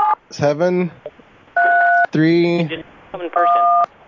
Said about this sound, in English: I'm hitting all these buttons over the phone. I can type it in.